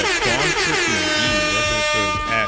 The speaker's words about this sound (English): I should have dealt with the air horn.